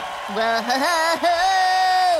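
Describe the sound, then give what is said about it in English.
A single voice mimics a Pokémon contest crowd getting worked up again, with a long, sustained whooping cry that rises and wavers in pitch, then holds steady for about two seconds. “As the crowd has gotten worked up once more.”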